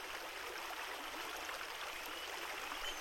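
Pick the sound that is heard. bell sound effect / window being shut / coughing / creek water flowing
creek water flowing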